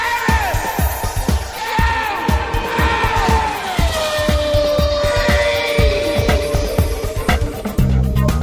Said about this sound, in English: this is what Le Mans sounds like at night if you're up by the Dunlop Bridge approaching Tête Rouge at the S's. As you know, one of my favourite places to watch the race at night. It is 11:45. The race has been running nearly 9 hours.